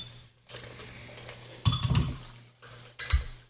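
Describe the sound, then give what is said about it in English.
Ice cubes drop and clatter into a glass of Garrison Brothers Texas Bourbon in a few short bursts, with bright clinks and a soft rattle between quieter pauses. No one speaks. “All right, yeah, let's add the rocks. On the rocks.”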